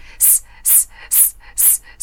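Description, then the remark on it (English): A person exhales in short, sharp hisses, like air escaping a leaking tire, as a diaphragm breathing exercise: about five loud, bright bursts in a steady, even rhythm, with brief pauses between them and no talking. “Let's go hissing, which many people know. So we do we sound like a tire, right?”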